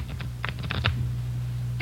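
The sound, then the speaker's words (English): A deck of playing cards is shuffled, a quick run of crisp papery snaps followed by a pause and one last flick, over a steady low hum. “Give him a good shuffle, huh?”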